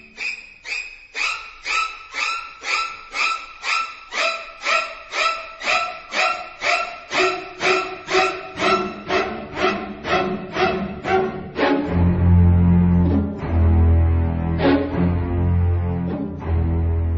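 A film score of screeching violins, cellos and violas: about twenty shrill, sharp string stabs in a rapid steady rhythm, giving way to low droning string chords with a few more piercing stabs. No talking.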